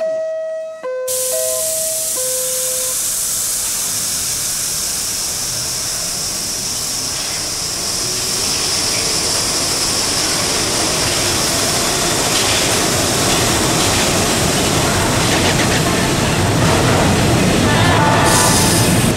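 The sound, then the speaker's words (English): A few short chime tones sound, then an express subway train, next stop New Lots Avenue, roars along the rails in a loud, steady rumble with hissing and rattling, the noise swelling slightly as it goes on. “Express train. The next stop is New Lots Avenue.”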